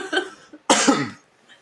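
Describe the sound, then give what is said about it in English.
A single sharp cough after a sip of beer bursts out, preceded by a brief throat-clearing rasp, fairly loud, then quiet. “Oh, I just had a sip of beer, and I coughed.”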